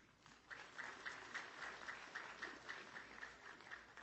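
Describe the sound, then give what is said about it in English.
A small group claps steadily for a few seconds, starting just after a brief pause, with a soft, even patter that stays fairly quiet throughout. “Jennifer did a great job putting this together, and she deserves a round of applause”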